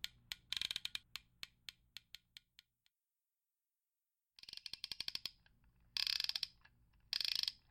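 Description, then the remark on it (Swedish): Freshly ground lock tumblers clicking as a safe is cracked: a run of crisp, evenly spaced metallic clicks that gradually slows, a silent pause, then several quick bursts of rapid, ratchet-like clicking with no voices. “Då börjar vi med att lyssna på pulsen lite grann. Jajamän. Låter friskt och gött det här. Nyslipade tillhållare.”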